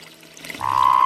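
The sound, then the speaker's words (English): A Sonoran Desert toad urinating when picked up, in a little creek: a steady stream of liquid starts about halfway through and grows louder, with a narrow pouring pitch, and no voices. “But it certainly has a strong, healthy urine stream.”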